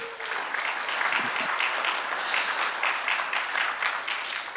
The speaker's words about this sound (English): That is the sleepiest clap I have ever heard.